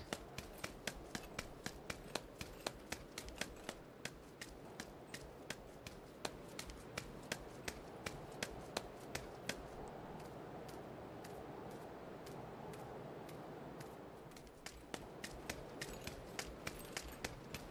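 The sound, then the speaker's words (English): A backpack sound effect from a game patch: steady rhythmic rustling and clicking, like a backpack bouncing with each step, with a light metallic jangle of keys. The pattern keeps a walking pace throughout, moderately loud, briefly easing near the end. “So you can hear they added a slight, like, keys jangling.”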